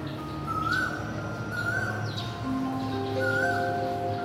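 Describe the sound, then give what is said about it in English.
Early morning ambience outside a flat, with wind rustling through tree leaves and a few birds chirping and calling intermittently, one calling in the distance, over a steady low hum of background noise. “There's the wind in the trees sort of rustling through the leaves. There's birdsong in the air.”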